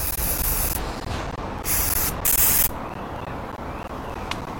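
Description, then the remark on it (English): Several short hissing bursts of a liquid athlete's foot aerosol spray being sprayed onto golf clubs, in quick uneven pulses over a steady background noise, with the last burst the loudest. No one speaks. “I've bought this athlete's foot spray, and it's a liquid. So if you look, it's just spraying off.”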